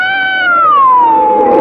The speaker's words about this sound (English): Where did that wind come from?